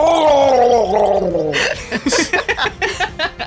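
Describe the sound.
A voice imitates a demonic scream: a strained, harmonic wail that slides downward in pitch, then breaks into a rough, gargling, sputtering rasp of choppy bursts. It is loud and heard alone.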